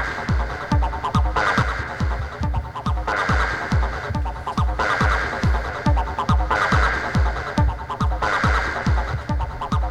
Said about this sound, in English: Now this shows another kind of sound that you can get out of the 303 when you add a little bit of a reverb and delay to it. It sounds spacey.